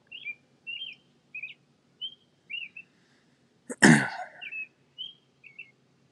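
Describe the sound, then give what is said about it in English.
A bird chirps repeatedly in short, bright bursts spaced about half a second apart, with a sudden loud sneeze-like burst cutting in midway. No one speaks. “Mostly just birds chirping.”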